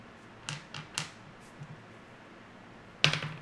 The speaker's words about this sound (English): I'll roll the dice. You want to roll a dice? Okay, roll the d10.